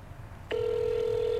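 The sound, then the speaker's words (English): A phone call's ringing tone starts abruptly after a brief quiet moment, then holds as one steady, unbroken electronic hum at moderate loudness, with no voices. “It's still ringing, guys.”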